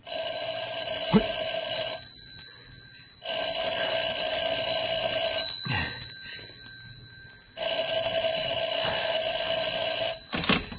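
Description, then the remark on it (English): A telephone rings loudly in three long, buzzing bursts separated by brief pauses, with no voices present. “I'm sorry, he can't come to the phone just now.”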